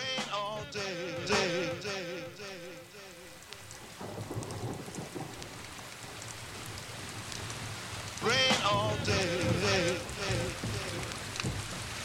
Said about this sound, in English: It has been raining all day, and that's very appropriate